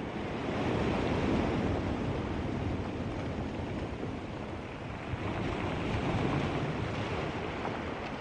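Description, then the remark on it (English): Ocean waves surge steadily beneath a constant roar of wind by towering seabird cliffs on Skellig Michael, looking out into the Atlantic, a dense, unbroken wash of noise that stays loud throughout, with no voices present. “No matter where I am, if I'm on Skellig Michael, really on the very edge of Europe, these wild, fantastic places with these towering seabird cliffs and this lighthouse perched on the side of this cliff looking out into the Atlantic.”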